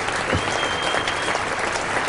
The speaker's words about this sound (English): I'm sure the entire ground clapping at that announcement by Alan Curtis that John has just done his final test match session.